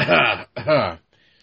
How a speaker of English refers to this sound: Cough.